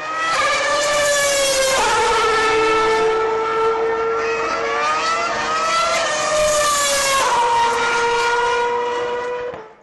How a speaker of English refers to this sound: It's interesting because after going to Austin, the text message sound on my phone has changed. It is now the sound of Formula One cars going by.